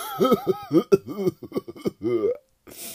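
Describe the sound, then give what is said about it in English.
A person imitates the harsh cough of someone who drinks alcohol and smokes cigarettes, with a rapid string of raspy, guttural voiced hacks, then a short breathy rasp. Fairly loud, with no clear speech. “As in drinking alcohol and smoking cigarettes. As in, they'll have coughs like...”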